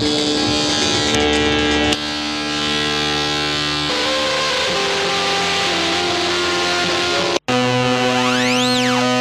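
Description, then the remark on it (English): Harsh, buzzy drones from an Erebus synthesizer run through distortion, filter or ring-mod pedals, thick with distorted overtones, shift pitch every couple of seconds, cut out abruptly for a moment, then return with a gliding, metallic, ring-modulated whine sweeping up and down. “That sounds like a sort of distortion / filter by the sound, or ring mod.”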